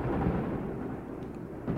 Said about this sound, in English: The thunder pealed and echoed across the lake and among the distant islands, and the floodgates of heaven then opened and let out their rain in streaming torrents.